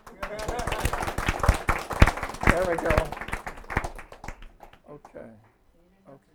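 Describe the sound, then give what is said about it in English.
A room of people breaks into brisk, scattered applause that builds, then thins out and fades over several seconds, with a voice speaking briefly over the clapping. “That was a pretty good clap.”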